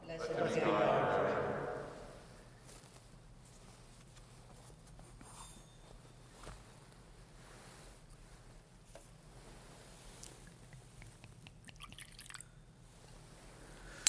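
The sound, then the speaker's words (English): A brief, fairly soft trickle of water is poured into wine in a chalice at the start. Afterward comes a long quiet stretch with a few faint clinks and taps. “By the mingling of this water and wine, become partakers of his divinity and became partaker of our humanity.”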